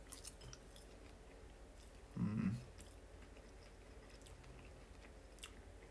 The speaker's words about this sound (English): Does this chicken sound like it tastes good? I think it does.